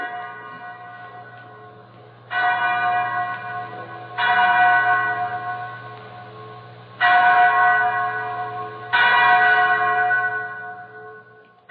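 A chapel bell tolls four times at a slow, uneven pace, each stroke ringing out loud and rich before decaying into a long, humming resonance beneath the next.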